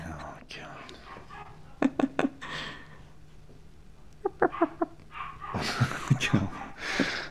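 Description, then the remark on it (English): Quick bursts of small dog barks come in clusters of three or four, very faint and muffled in the background, with soft murmured voices and low background noise in between. “Actually, it was very, very faint, I don't think. And actually, when I listened back to episode 1, I did hear her a little bit then, but it wasn't obvious.”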